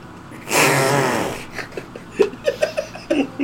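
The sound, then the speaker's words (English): A voice blows a buzzy, breathy raspberry imitating a fart, lasting about a second, followed by a string of short, choppy bursts that sound like giggling. “This is a fart.”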